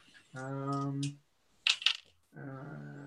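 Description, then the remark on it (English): A short clatter of dice tumbling and rattling across a table for about a third of a second, rolled for a culture roll, set between two stretches of sustained voiced vocal sound. “Well, I get two sixes and four dice.”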